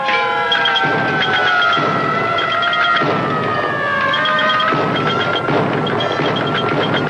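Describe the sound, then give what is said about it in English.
Several police car sirens wail at once as a mass of police cars rush to answer a signal, their overlapping tones sliding slowly up and down in loud, steady sweeps over a rumbling engine roar, with no voices. “Now a mass of police cars responding to the Riddler's phony signal rush into his trap.”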